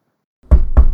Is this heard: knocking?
yes